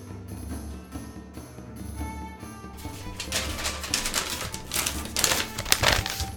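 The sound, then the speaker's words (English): Paper rustles and crinkles as someone searches for notes, in a burst of irregular, scratchy handling over a low steady hum. It grows busier and louder toward the end, with no one speaking. “Paper rattling noises. Found my notes.”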